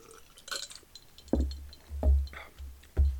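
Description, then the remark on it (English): Glasses of rum sour clink together in a toast, giving three sharp knocks with a dull, heavy thud underneath, spaced unevenly over a few seconds with faint bright chinks in between. No one speaks. “Cheers, matey. Clink it up.”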